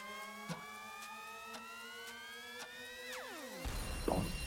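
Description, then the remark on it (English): A quiz time-up buzzer: a sustained electronic tone, rich in harmonics, creeps upward over regular ticks about twice a second, then swoops sharply down in pitch and gives way to a burst of noise. “No, is that out with the buzzer?”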